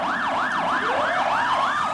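A police car siren wails in rapid rising-and-falling sweeps, loud, with a second siren tone sliding underneath and a steady road rumble, as police cars chase a driver at full speed through the Buller Gorge in torrential rain; no one speaks.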